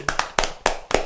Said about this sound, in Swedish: Men jag tror att vi ger annan spontan applåd